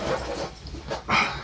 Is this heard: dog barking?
yes